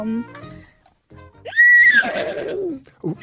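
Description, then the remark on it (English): A 14-year-old caller from Campbelltown does a vocal imitation of a horse whinny: a loud, high rising squeal that wavers and trails off into a lower, breathy rumble, preceded by brief voiced sounds. “All right, and give us your animal noise. Okay, so I can do a horse.”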